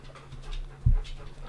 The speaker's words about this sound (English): Stop breathing in the microphone. Jesus Christ.